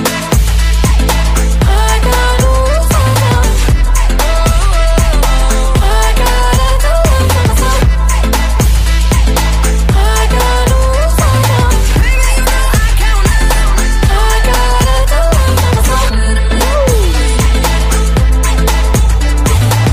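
A pop song plays loudly and continuously, driven by a steady thumping beat and deep bass, with bright melodic lines layered on top and no talking.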